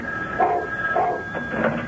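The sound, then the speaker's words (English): A dog barks three times at an even pace, each bark short and mid-pitched, over a faint steady tone that runs underneath the whole time. “And the dog barked.”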